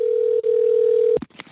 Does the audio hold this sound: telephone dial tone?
yes